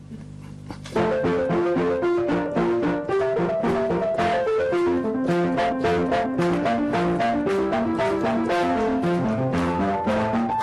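A recording of baroque classical music by Bach plays steadily after a brief low hum at the start, with busy interweaving melodic lines over a clear, even pulse. No one speaks.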